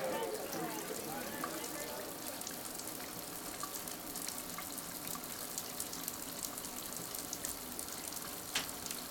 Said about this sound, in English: I like taking a shower at night because when I use my finger to outline my daughter's name on the steamy glass door like I do backwards and forwards every day, it reflects onto the shower walls too.